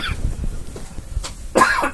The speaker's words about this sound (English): By the way, sorry for the coughs on my part, everybody. I spent the weekend camping with Cub Scouts in the hills when other parts of Southern California are an inferno, so everything outside is covered in smoke.